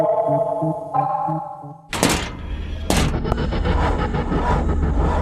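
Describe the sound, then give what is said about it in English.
A malfunctioning thermoelectric power generator: rhythmic electronic tones pulse, then two loud bangs burst out a second apart, giving way to a harsh, steady roaring hum with no talking. “It's just the thermoelectric power generator playing up.”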